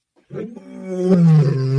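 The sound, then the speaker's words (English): A single deep, sustained lion roar swells from a low start into a loud, rumbling bellow with rich harmonics, heard alone without any talking. “You hear that? That's a lion.”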